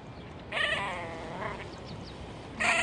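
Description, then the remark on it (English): A female grebe calls at nest seven, which holds one freshly laid egg, giving a drawn-out, wavering, nasal cry that fades after about a second, then a second loud call starts at the end. No one speaks. “Let's move up here quiet, and she'll talk to you.”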